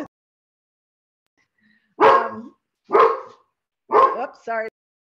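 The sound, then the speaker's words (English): A pet dog, Gizmo, barks three times at a steady pace, loud, the last bark trailing into a short whiny yelp, with quiet pauses between and silence before. “I've got the rain, and you've got the dog.”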